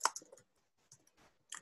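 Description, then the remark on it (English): Quiet, irregular clicking of keys being typed, a quick burst at first, then scattered taps after a pause, with no voices. “Sorry if you can hear the typing.”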